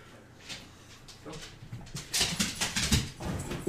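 A dog whimpers softly, then a flurry of thumps and rustling follows as it leaps onto a couch, the scuffling growing louder and busier over the last couple of seconds.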